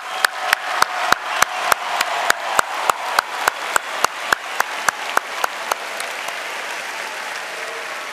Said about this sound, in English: But before I start my remarks, I want to recognize that none of this would be possible without the advisors that drive and nurture this organization. So I want all of you to join me in giving a round of applause to the advisors.